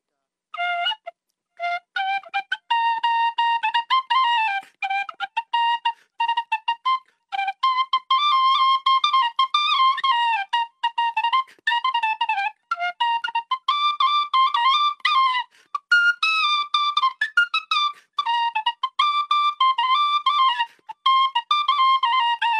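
An Irish tin whistle plays a lively tune alone, bright, with quick high notes, short runs and brief breaths between phrases, continuing steadily throughout.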